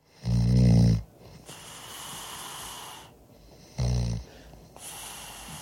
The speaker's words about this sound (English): The band was a little annoyed with him sleeping there in the studio, so they stuck a microphone in his face and recorded him snoring.